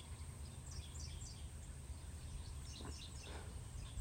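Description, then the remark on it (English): Faint birds chirp outdoors in two short bursts of quick, high tweets, set against a steady background hiss and low rumble, with no one talking. “Thought y'all might like to hear the birds.”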